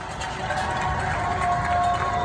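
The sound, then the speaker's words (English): A dense, steady wash of many people cheering and clapping from their neighborhoods in the evening to show appreciation for healthcare workers and essential employees, with a sustained whistle-like tone running through it; the roar holds level for the whole couple of seconds. “Every evening, people around the world are cheering in their neighborhoods to show their appreciation.”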